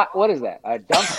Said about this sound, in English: You sneezed.